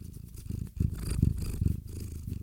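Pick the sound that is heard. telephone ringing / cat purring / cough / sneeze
cat purring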